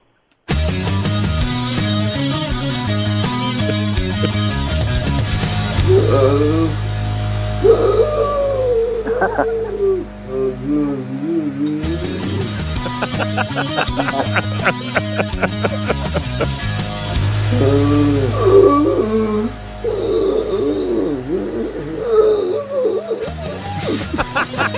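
A steady electronic beat with pulsing bass and rapid clicking percussion runs under warbling, hooting vocal moans and strained yelps, a man's sleep noises and attempts to yell for help in his dreams, chopped and looped into a musical remix.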